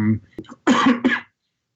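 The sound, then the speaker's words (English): Two quick, dry coughs, the first harsher and longer, preceded by a brief vocal sound, then silence. “dry cough, I don't know what that could possibly be a symptom of”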